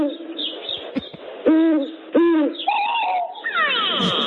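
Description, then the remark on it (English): Pet birds call loudly as they are being fed, letting out a run of tonal, hooting cries that rise and fall in pitch, several in quick succession, with no one talking. “Hold on, I have to feed my birds.”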